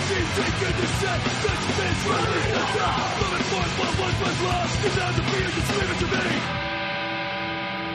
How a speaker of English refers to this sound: That was me. That was you. He's screaming.